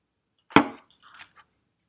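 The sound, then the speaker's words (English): A single bright clink of glasses knocking together in a toast, fairly loud, followed by a few faint rattles and taps as they settle. “Little clink clinkies.”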